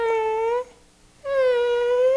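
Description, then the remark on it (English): A kitten wedged in the engine under the hood of a truck at a Home Depot meows twice, each cry a long, steady, high-pitched wail, with a brief silent pause between them and no voices. “And he's like, oh my goodness, one of the kittens is somewhere in the truck.”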